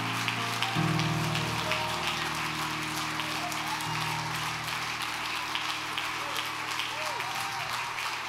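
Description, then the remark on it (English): An audience claps hands as loud as they can in a dense, steady wash of applause lasting the whole clip, with sustained low keyboard-like tones holding underneath. “Clap your hands as loud as you can.”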